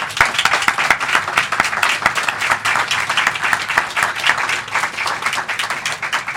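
Steady applause from an audience, a dense crackle of many hands clapping at once, sustained and fairly loud for several seconds with no voices over it.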